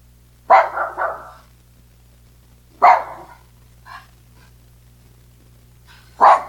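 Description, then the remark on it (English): A dog bark sound played by an Echo smart speaker in answer to the request "what does a doggy sound like?": a quick triple bark, then single barks spaced a couple of seconds apart, with a faint yip between, sounding clear over a low steady hum. “I heard, what does a doggy sound like?”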